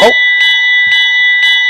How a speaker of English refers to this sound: But that bell indicates that we have run out of time for this segment of our show